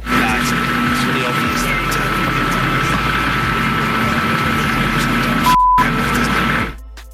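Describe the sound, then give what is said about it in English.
Loud, steady rotor-like roar of a helicopter fills the scene, with a voice speaking underneath that is largely drowned out by the constant mechanical noise. “Now, I know that was just a lot of noise because there was a helicopter there.”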